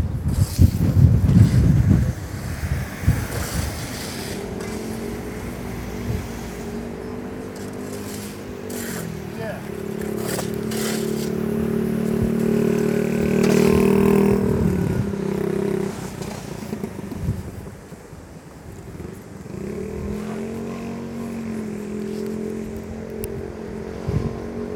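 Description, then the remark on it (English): Seaside ambience while walking along the main sands in Margate, up towards Margate train station and past Dreamland: gusty wind rumbles across the microphone, loudest at the start, while the steady droning hum of passing traffic engines rises and falls throughout. “Walking along the main sands now, along up towards Margate train station and past Dreamland”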